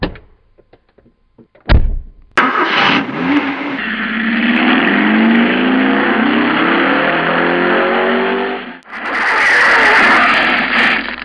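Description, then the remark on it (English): A car door thuds shut, then an engine starts and revs hard, roaring steadily as the car pulls away, rising again with a fresh burst of acceleration near the end. “do you have a car? Just there. Take me to Sarah's place, quickly.”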